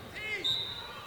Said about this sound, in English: She's ran into heavy traffic in there. And the whistle sounds.